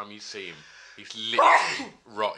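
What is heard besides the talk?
sneeze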